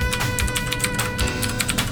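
Rapid computer clicking and keyboard typing while looking at a band's Bandcamp page, a steady run of sharp taps over a soft background hum, with no voices.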